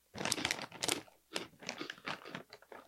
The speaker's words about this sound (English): And I'm going to have another one. Sorry, I'm crunching.